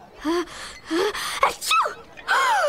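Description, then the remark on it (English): A person gasps in several sharp, voiced intakes of breath, then lets out a loud, explosive sneeze, followed by another short vocal gasp. Clear, with no talking. “I think I just had an out-of-the-blue arterial explosion.”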